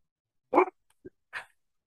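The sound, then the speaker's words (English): A dog barks a couple of times: a sharp, fairly loud woof, a tiny yip, then a shorter second bark, separated by brief silences with no one talking. “And He's already calling the dogs.”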